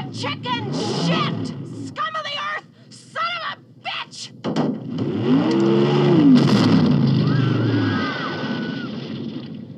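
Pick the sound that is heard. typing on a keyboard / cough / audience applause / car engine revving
car engine revving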